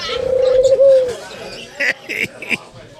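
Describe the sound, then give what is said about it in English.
A dove coos, one long, smooth, hollow note followed by a few shorter, clipped coos in quick succession. “Okay, enough of the doves.”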